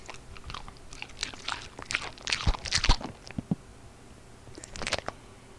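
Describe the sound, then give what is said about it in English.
Wet chewing of cheese with sharp bitey crackles for a few seconds, a brief pause, then a quick lick at the end. No voices. “The lick at the end is what makes this in clutch for me.”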